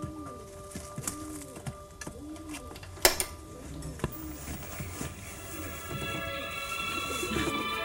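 bird cooing

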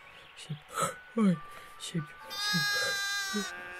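sheep bleating

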